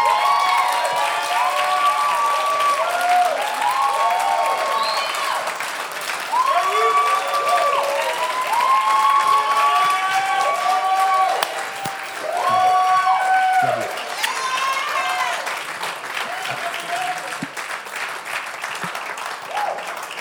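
A crowd claps steadily and loudly for about twenty seconds, with rising whoops and cheers riding over the applause throughout, easing only slightly toward the end.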